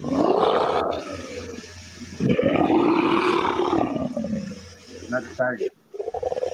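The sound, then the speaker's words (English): A person imitates a lion's roar twice in a row, two long, loud, rising-and-falling growls, followed by a few short breathy vocal bursts. “She's a lioness because I ain't lying. She's a lioness. You don't want her. And that's not even a good lion.”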